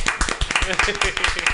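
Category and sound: crowd, round of applause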